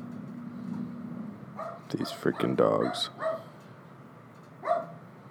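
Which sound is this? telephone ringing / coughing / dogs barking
dogs barking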